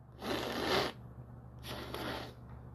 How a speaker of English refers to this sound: Sorry, I had to take my nasal spray. Ugh. Sounds sick.